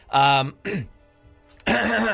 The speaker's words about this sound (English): let me clear my throat.